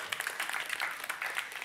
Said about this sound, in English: You guys have a seat. Thank you so much. Give him a hand clap as they go back.